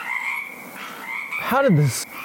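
A dense chorus of 182 frogs at the door of a kosher restaurant in Fairneck croaks steadily, with one loud, swooping croak rising above the rest near the end. No voices are heard.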